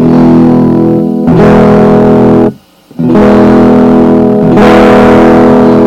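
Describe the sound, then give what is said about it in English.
Loud, heavily distorted sustained tones with a harsh buzzing edge, playing in two long bursts separated by a brief near-silent gap, with no voices. “Now let me turn that distortion down.”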